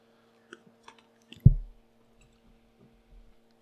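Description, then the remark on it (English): Someone drinks the last of the water from a water bottle: a few light clicks and taps, a soft low thump, then brief quiet gulping and squishy sounds, with no talking. “I'm going to get some water here. Where did I put my water bottle?”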